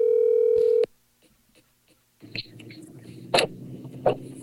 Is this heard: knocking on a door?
no